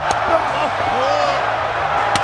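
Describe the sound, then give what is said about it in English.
In a US title wrestling bout, Scott Hall hits Goldberg with two sharp, loud chops that slap against a chest, one at the start and one near the end, over a steady roar of crowd noise with indistinct voices. “Listen to these chops.”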